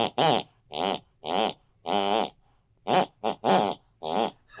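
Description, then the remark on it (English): An elderly woman snores a tune, heard distantly from the room next door: a string of about ten nasal, pitched bursts rising and falling in a sing-song rhythm, with short pauses between notes and no talking. “with the sound of my elderly mother snoring distantly from the room next door”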